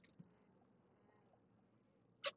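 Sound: sipping water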